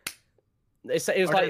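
A single sharp, loud slap on a belly cracks out and fades fast, followed by a short pause and then people talking.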